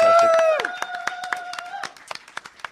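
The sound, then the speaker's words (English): A round of audience applause: a drawn-out cheering voice at the start, then scattered, fairly quick hand claps that gradually thin out and fade. “I want you to give a big round of applause.”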